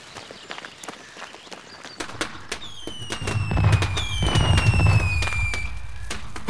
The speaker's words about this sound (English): Oh man, I love fireworks! And there comes the police to see what the fuss is.